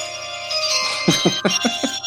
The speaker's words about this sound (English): Some low tech stuff for you guys, but it had to be done. That is now my ringtone for the next week or so. I think it'll stay around.